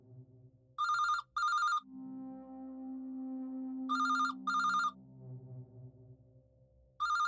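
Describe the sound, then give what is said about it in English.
A phone rings on an outgoing call to a dealer: paired electronic ring bursts repeat about every three seconds, three times, clear over a low steady hum between the rings. “Deepa picked up her phone and found the number of a dealer.”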